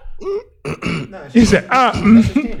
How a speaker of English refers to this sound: I was just clearing my throat.